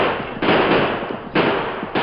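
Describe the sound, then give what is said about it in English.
Several guns firing in loud, dense bursts of crackling shots, three waves roughly half a second to a second apart, each swelling sharply and slowly trailing off, as a group of armed men surrounding a building open fire. No one speaks. “I want them to hear our guns.”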